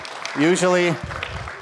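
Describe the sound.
A voice calls out with a drawn-out tone, then a brief burst of audience clapping starts up at Unity, a dense patter of many hands.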